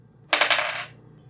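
New purple dice are rolled for an Arcana check, landing a 22. They clatter across a tabletop in a quick burst of rattling clicks that tumble together for about half a second before settling; no one speaks.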